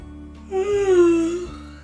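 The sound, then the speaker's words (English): A long, voiced yawn at bedtime during a story, lasting about a second, a steady mid-pitched moan that sags slightly lower toward its end before fading out, with no other sound around it. “Both of you now yawned.”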